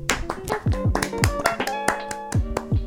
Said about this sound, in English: Clap it up to her. Yeah. Clap it up.